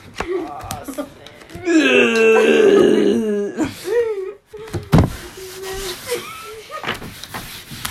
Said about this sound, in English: Man, you did ASMRs, but they're burping ASMRs.